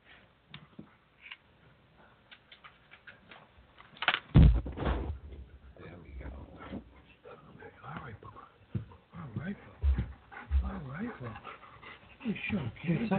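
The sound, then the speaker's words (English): A big young dog pants and whimpers in uneven bursts while trying to dig on a couch, with a louder snuffling huff partway through and restless breathy sounds continuing to the end. “He's just a big old puppy.”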